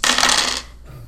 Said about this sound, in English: Roll a giant handful of dice. Oh, dear. Nothing good can... Dice.